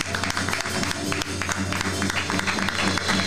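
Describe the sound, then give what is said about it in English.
A crowd claps hands together in praise in dense, sustained applause with a warm murmur of voices underneath, steady for a few seconds. “Hand clap of praise, please.”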